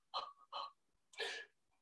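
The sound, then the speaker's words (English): Someone demonstrates the shallow mouth breathing most people do, in contrast to box breathing: two quick, short breaths followed by one longer, airy breath, fairly loud and breathy with brief pauses between, and no talking. “Box breathing, most people are mouth breathers. And it's about this shallow.”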